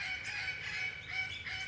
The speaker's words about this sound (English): Oh, those are the parrots. I'm trying to figure out what's that squawking. The parrots.